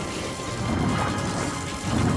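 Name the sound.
glass smashing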